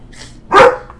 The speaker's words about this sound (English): Bark. Someone's at my door.